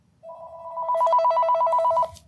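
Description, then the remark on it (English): A brewery's telephone rings with a steady electronic warble, a fast trilling two-tone pulse lasting about two seconds. It is loud, with faint background noise and no talking. “God damn it, who's calling on our phone?”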